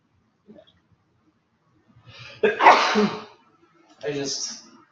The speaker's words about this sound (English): But even then, I need to sneeze.